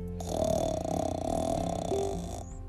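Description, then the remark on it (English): A reader's voice imitates a bear's long, rumbling snore, a single sustained growly breath lasting a couple of seconds, steady with a gritty, vibrating texture. “Bear tells a story he has never told before, but just before the end, there comes a rumbling snore.”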